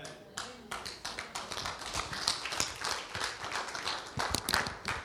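An audience applauds steadily for about five seconds, a dense, crackling patter of many hands clapping at a fairly even, moderate loudness with no voices standing out.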